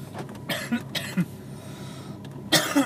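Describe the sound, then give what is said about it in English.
Several harsh, raspy coughs and throat-clearing bursts come in quick succession, with a brief pause before one final loud cough. “We gotta wait for the cough drop to get there, everybody.”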